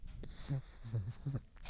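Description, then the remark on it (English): A male dog says hello with a soft greeting, three short low grumbling vocal bursts in quick succession, fairly quiet, with no talking over them. “Yeah, he did say hello.”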